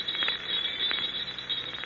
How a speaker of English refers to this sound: Bells, jester's bells. For 40 years I've lived with the sound of those bells. Fool's bells, jester's bells.